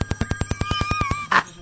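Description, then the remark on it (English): A red telephone's bell rings in a rapid, evenly spaced clatter of about a dozen strikes, loud, with a steady tone running underneath before it cuts off into a brief noisy burst. “The red phone's ringing.”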